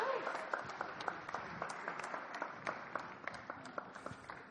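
An audience applauds steadily, a dense patter of many hands clapping at an even moderate level, with a few sharper individual claps popping out, continuing for several seconds.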